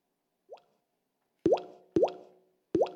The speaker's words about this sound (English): And he hears raindrops. And the raindrops are coming. But only three.